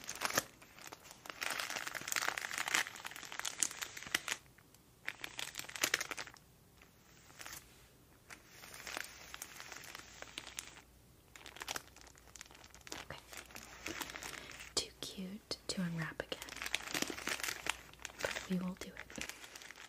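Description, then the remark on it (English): Continuous crinkling and rustling of tissue paper, with bursts of crisp crackle and a few short lulls as the sheet is handled and folded. “Like a tissue paper,”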